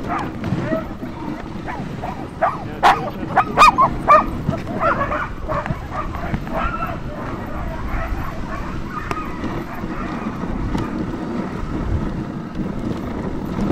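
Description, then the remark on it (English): A team of sled dogs harnessed to a sled in the snow barks and yips excitedly, overlapping sharp calls in a dense, continuous chorus, with wind rumbling underneath and faint voices mixed in. “One of the very first things I notice, the minute the dogs are on the run, they stop barking.”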